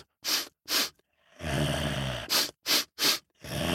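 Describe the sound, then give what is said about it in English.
A voice imitates a grizzly bear sniffing around a huge pumpkin: two sharp sniffs, a long rumbling snort-like growl, then three quick sniffs in a row and another breathy inhale, all fairly loud. “There was the grizzly bear, and that grizzly bear walked around the huge pumpkin, smelling and sniffing.”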